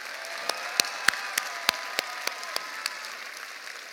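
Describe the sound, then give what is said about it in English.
Audience applause: a steady wash of many hands clapping, with a few sharp claps standing out at a regular rhythm, moderately loud and continuing throughout with no talking. “So let's give them a round of applause for preserving this great organization.”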